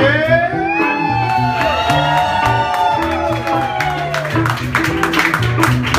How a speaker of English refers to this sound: Please join me with a big round of applause for our opener tonight